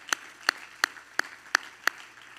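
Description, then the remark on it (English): Six crisp hand claps, clapped in praise to the Lord during a sermon, land in a steady, even rhythm, about three per second, sharp, with no voices over them. “Everybody clap your hand to the Lord.”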